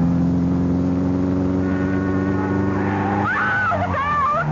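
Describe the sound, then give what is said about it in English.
An imported sports-model car in a hit-and-run at the corner of 15th and Garfield roars with a loud, steady droning rumble, then about three seconds in a high, wavering screech like a scream or squealing tires cuts in over the engine. “Was struck down and killed by a hit-and-run driver at the corner of 15th and Garfield at 4 p.m.”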